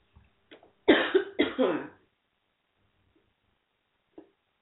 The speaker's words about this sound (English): I hope you guys did not hear me cough.